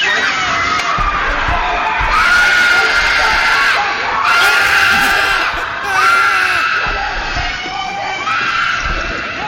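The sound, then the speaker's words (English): A young girl in a movie clip screams loudly and shrilly in several long, wavering bursts, piercing, with a busy, noisy background of other commotion beneath. “Listen to this little girl scream. She has the best scream.”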